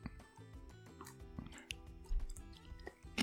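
Someone munches spicy crackers with hot sauce right up against the microphone, with irregular crisp bites and crackles over a low steady musical hum in the background.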